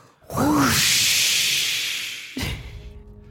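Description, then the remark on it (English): Several voices, including the sound engineer's, make a whoosh together as the transition into the 'previously on' recap of the show Rivals of Waterdeep. It starts with a brief voiced rise, then a long breathy hiss lasting about two seconds before it fades, and a short vocal sound follows. “our sound engineer, just did the whoosh with us.”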